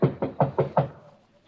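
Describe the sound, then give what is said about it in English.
Five firm knocks on a wooden bedroom door in quick, even succession, fairly loud, knocking to wake the man in the room, with a short echo fading afterward. “Better knock harder.”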